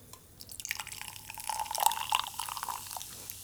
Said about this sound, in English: Good, good bit of fizz there. It's fizzy.